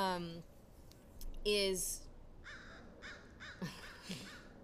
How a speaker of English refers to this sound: Thank you, Crow, for... thank you, my spirit animal. For chiming confirming.